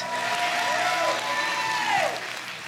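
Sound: audience hand clapping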